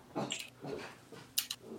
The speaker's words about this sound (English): Man, the dogs are fucking wild today, too. Just barking.